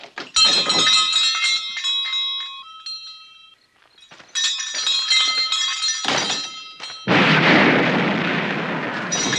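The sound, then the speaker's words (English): Metallic clanging and ringing crashes come in two bursts, then a loud explosion from a file drawer being opened erupts and roars on until the end. No one speaks. “I opened the drawer and boom, blitzkrieg right in my face.”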